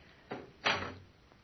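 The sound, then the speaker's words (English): Side doors are shut one after another: a softer thud, then a heavier, louder bang with a brief low rumble trailing off. No one speaks. “Out this way and shut the doors behind us.”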